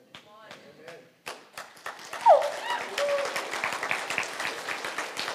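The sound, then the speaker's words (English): An audience breaks into applause, dense irregular clapping that builds after a few scattered claps and a voice, then holds steady and loud with cheers and voices mixed in. “Si ese aplauso es para mí, If that applause is for me, it's okay.”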